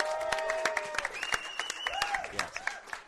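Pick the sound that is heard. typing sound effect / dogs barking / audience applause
audience applause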